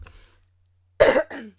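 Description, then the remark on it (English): Two quick coughs in succession, a loud harsh burst followed by a softer second one, after a short stretch of near silence. “Yeah, and I just remember, sorry about coughing.”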